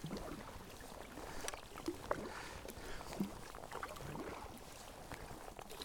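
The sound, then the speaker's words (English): Soft, rhythmic kayak paddle strokes dip and splash through calm water about 3 metres from the shoreline, along the edge of floating seaweed, with gentle drips and a faint breezy hiss in the background. “I'm paddling about 3 metres from the shoreline along the edge of the seaweed, the floating seaweed, the wrack.”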